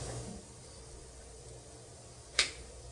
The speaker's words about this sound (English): Coin has been flipped. It's heads. Obama won.